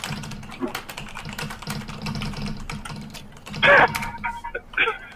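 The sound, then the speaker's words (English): Rapid, irregular clicking of keys on a computer keyboard, fairly loud, over a steady low hum, with a couple of brief louder bursts toward the end. “Somebody's going to fuck my keyboard right now.”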